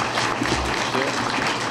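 An audience at the Idaho Falls City Club program on KISU applauds the guest at the end of the program in a steady, dense wash of clapping that stays at an even, fairly loud level throughout, with no pauses and no clear voices.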